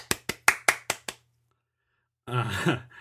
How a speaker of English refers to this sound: This episode is officially the 50th episode. It seems like there should be some sort of celebration. Maybe I should add like a little clapping sound right here or something.